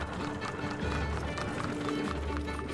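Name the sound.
horse hooves clip-clopping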